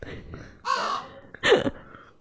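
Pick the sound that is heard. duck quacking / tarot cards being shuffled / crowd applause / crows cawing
crows cawing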